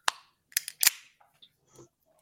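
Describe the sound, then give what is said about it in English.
A White Claw aluminum drink can is cracked open: a sharp snap, then a few quick metallic clicks and a brief fizzy pop, followed by faint rattling and handling noises. No one speaks. “I'm opening another White Claw just to get through all the other emails.”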